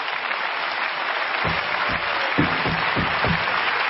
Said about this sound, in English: I commend you today. Everybody in here ought to give them a hand clap.